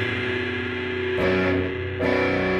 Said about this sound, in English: that's how you always play a G if you have distortion. That's a G of rock, yeah.